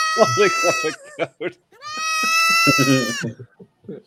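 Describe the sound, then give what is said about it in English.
A goat in a video bleats twice in long, wavering, nasal cries, loud, with people talking and laughing underneath and between the calls. “Goats are so weird.”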